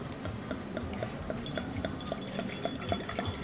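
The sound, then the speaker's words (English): Liquid is poured steadily into a glass, a continuous gurgling trickle with faint regular ticking in the background, fairly quiet, with no one talking. “So I'm going to, I'm actually going to pour.”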